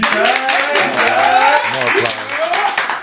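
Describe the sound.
A crowd claps steadily for a few seconds, a dense, continuous patter of applause with voices cheering and calling out underneath, fairly loud.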